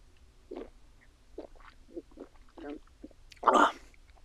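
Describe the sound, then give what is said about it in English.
Someone takes a small sip, with a run of soft, wet slurping and swallowing sounds, then a louder, breathy gasp near the end over a low background hum. “I'm gonna take a small sip here.”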